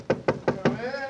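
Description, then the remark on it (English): Four crisp, evenly spaced knocks on the wooden door of Dr. Watson's study, followed right away by the start of a person's voice. “Let's tap on his study door.”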